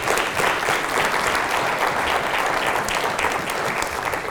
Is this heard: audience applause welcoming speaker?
yes